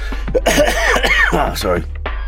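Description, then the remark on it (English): Loud coughing and spluttering, a run of rough throaty bursts and wet sputters over about two seconds, with no words spoken. “I had a good night last night, and just coughing and spluttering.”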